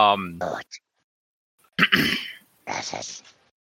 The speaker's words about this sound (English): Clear your throat. Does somebody have a lozenge?